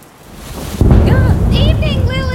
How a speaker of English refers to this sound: Why are you up on the roof in the middle of a thunderstorm? Thinking. I find I do the best thinking when I'm soaked and the air is full of electricity.